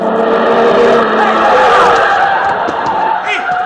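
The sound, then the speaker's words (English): A car making a right turn at the intersection of 15th Street and 4th Avenue at 2:45 p.m. skids with a drawn-out tire screech as it hits a pedestrian crossing as the light changes, amid dense, loud street traffic noise and murmuring crowd voices, with no clear separate impact standing out. “He hit him! That wasn't much. Wow, look at those tire marks.”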